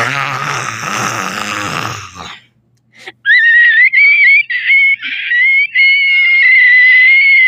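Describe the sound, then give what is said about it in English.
A monster lets out a nasty scream: a rough, gravelly roar, a brief pause, then a loud, piercing screech that wavers and holds for several seconds. “The monster let out a nasty scream.”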